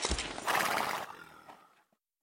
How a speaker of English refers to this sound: Here, I'll see to your horse.